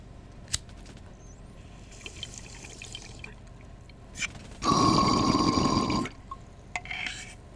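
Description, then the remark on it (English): A bong bubbles loudly for just over a second, gurgling water over a deep rumble, with a few sharp clicks before it and quiet gaps around it. No one speaks. “If you hear coughing and bubbling, the show is brought to you by Marijuana Asshole.”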